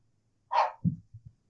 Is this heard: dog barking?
yes